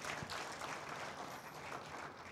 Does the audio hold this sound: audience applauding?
yes